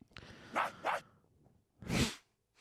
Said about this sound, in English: Jesus, that's a loud dog.